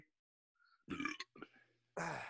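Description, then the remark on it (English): A series of loud burps: two quick gurgling belches, a shorter one, then a long rasping burp trailing off at the end, with no talking in between. “Wow, you're really just burping up a storm there, oh, huh?”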